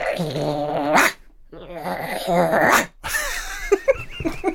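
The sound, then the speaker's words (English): A person growls and snarls in a high, strained voice, imitating an angry chihuahua, in several harsh bursts, ending with a few short breathy yips. “You sound like a very angry chihuahua.”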